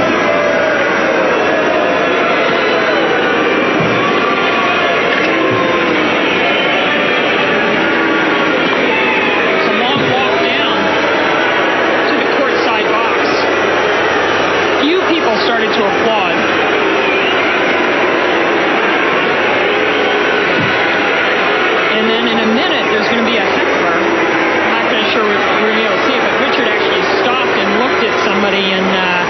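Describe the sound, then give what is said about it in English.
A tennis crowd boos loudly and without letup for the whole half minute as Venus and Richard Williams walk down to their seats by the court, a dense, rumbling roar of many voices that swells slightly at moments but never breaks. “It's incredible that the crowd booed for so long.”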